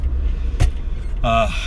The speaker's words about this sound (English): You'll hear my blinker or me braking or my noisy old car. That happens as well. I'm recording on my iPhone that sits on a smartphone holder just right in the middle of my car. So my car is a bit noisy. It's a little old.